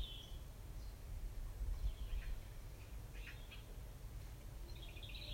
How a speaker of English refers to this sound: Imagine you're lying down on the grass, and all around you you can hear insects and birds. There's peace in this garden for you.